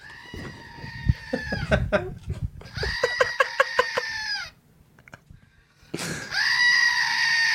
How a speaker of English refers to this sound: All right, so the screaming goat works. That's strong. That's awesome.